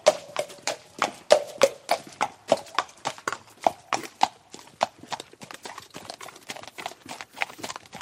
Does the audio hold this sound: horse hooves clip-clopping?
yes